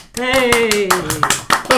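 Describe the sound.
Steady applause of hand claps for a contest winner, roughly four or five sharp claps per second, with a voice giving a long falling cheer over the first second before a few louder claps close it out.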